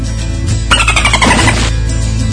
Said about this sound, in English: Dolphins, bring on the dolphins!